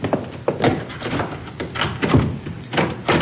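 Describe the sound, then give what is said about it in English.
A door is pushed shut and locked: a series of solid thunks and clunks with rattling clicks in between, fairly loud, with no one talking. “I'll lock the door.”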